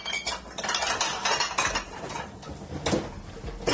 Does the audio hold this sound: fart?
no